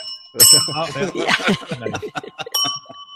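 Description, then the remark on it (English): A bright bell rings twice, its clear high tone lingering, while people laugh and chuckle over the first ring. “Wait, I'm going to do the bell for that.”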